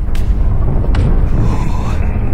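A giant creature with a leg the size of a redwood steps onto a road. Its footstep lands as a loud, deep boom that shakes and rattles a car and makes pebbles leap, followed by a heavy, continuous low rumble with a couple of brief sharp cracks riding on top.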